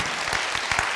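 A crowd claps steadily, the dense patter of many hands forming a continuous, moderately loud wash of applause with no voices over it.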